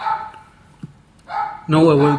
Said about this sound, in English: There's the dog. We were waiting for it to make its appearance.